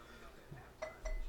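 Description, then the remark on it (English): A small taste of spicy double IPA beer made with Carolina pepper being poured into a glass: a faint liquid trickle with two bright glassy clinks, the second ringing slightly longer, plus low murmuring in the background. “I'm going to pour you a little bit.”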